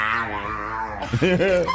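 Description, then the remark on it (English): A dog gives a drawn-out, voice-like vocalization as it tries to say hello when prompted: a sustained whine followed by a few rising and falling yowls that mimic human speech, fairly loud with no one else talking. “That's George, the talking dog.”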